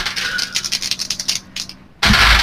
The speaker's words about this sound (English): Okay, in that case, I'll roll my 5 mooks after I get rid of some of these dice.